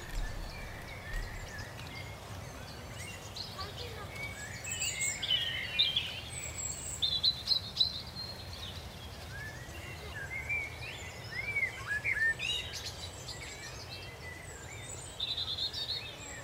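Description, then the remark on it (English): Several birds sing and chirp continuously in the tree canopy of the Westwood Valley at Wakehurst, a steep ravine of rhododendrons, limes, magnolias, maples, alders and oaks, their bright, overlapping calls layered over a soft outdoor hum. “As I walked into the Westwood Valley, a steep ravine inspired by the eastern Himalayan landscape, I found myself among rhododendrons, limes, magnolias, maples, alders and oaks, as well as the many birds that were enjoying the canopy.”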